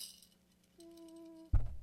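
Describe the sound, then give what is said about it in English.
About a cup of gravel rattles in a container as it is shaken around to cover a base and get it out of the trees: a faint clink, then a steady metallic ringing tone, then a sudden loud, gritty burst of shaking at the end. No voices. “So I'm putting about a cup of gravel in. And I'm going to shake it around and try to get it out of my trees here.”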